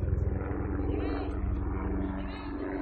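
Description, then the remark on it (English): A Black Hawk helicopter passes overhead during a baseball game, a loud, steady low rumble with a rapid rhythmic thumping of rotor blades that holds throughout, with faint background murmur beneath. “Looks like we're getting a Black Hawk helicopter flyover.”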